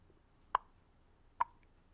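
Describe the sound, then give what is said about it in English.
Two sharp, crisp ticks of a loud kitchen clock, picked up by a microphone during recording, a little under a second apart, each a short woody click with a faint ringing tone, standing out clearly against a quiet background with no talking. “But no, we have a clock in the kitchen that is very loud, and I hear it a lot when we're recording this.”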